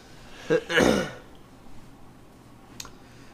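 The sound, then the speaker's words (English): A big yawn: a short breathy catch, then a longer open-mouthed voiced exhale that swells and fades, followed by quiet with one faint click near the end. “Wow, that was a big old yawn.”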